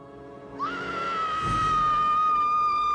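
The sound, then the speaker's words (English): A woman who has walked in and found a body lets out a single long, high-pitched scream that begins abruptly after a brief pause and holds at a steady, piercing pitch, loud, with no talking. “It's somebody walking in and finding a body.”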